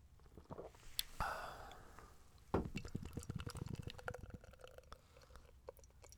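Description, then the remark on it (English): Steady glugging and fizzing of Jai Alai beer from Cigar City pouring into a glass, with a sharp hiss near the start and a foamy crackle continuing as it fills. No one speaks. “Let's go for the pour since you guys missed the one before.”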